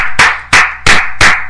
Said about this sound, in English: This is a golf clap. That's a golf clip.